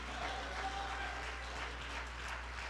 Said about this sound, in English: Hallelujah. Come on, let's clap our hands together in the house of God today. Praise God.